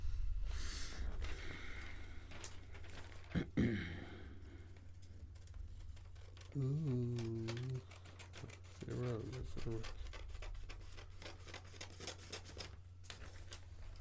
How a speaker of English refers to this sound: And if you don't like the sound of cutting paper, listen to this shit. Just do that for like a good 4.5 minutes.